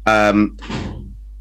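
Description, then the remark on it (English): A short vocal sound is followed by a door slamming shut in the speaker's room, a single muffled bang that rumbles briefly and fades. “A door just slammed in there in my room.”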